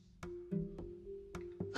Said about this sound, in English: Oh, excuse me. Man, got the hiccups, burping.